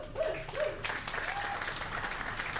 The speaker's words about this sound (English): And then we'll just get, what we need is a smattering of applause, like you kind of mildly enjoyed the show.